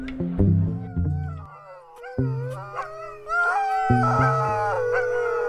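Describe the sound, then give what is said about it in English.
A team of sled dogs in the Boundary Waters, about to go ice fishing, howls together, several long wavering voices rising and falling over one another in a continuous chorus, with no one speaking. “We're out here in the Boundary Waters with a team of sled dogs today.”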